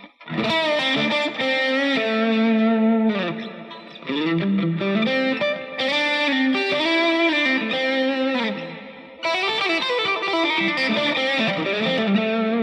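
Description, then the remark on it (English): A distorted electric guitar plays a fluid solo, notes connected by picking, hammer-ons, pull-offs and gliding slides, with sustained bright tones and brief pauses between phrases; no one speaks. “But my point is that there's picking involved, but there's also hammer-ons and there's pull-offs and there's slides and there's all these things.”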